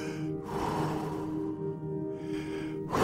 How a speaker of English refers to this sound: You're about to go in. I know now, just breathing.